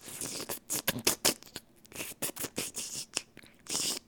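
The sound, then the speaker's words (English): A voice imitates the tiny slurping noise a man made as people squeezed past him: a quick, irregular string of short, wet, hissy clicks and smacks lasting a few seconds, fairly soft, with no words spoken. “And by the way, if that didn't come out clear, that was a little tiny slurping noise.”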